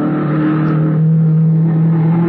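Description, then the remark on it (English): The engine of a low, cut-down blue race car roars loudly as it whizzes past during speed test trials on a long sandy beach, holding a strong, steady droning pitch with a slight rise near the end, with no voices. “They were racing in a low, cut-down blue car. The frame had looked familiar as it whizzed by me.”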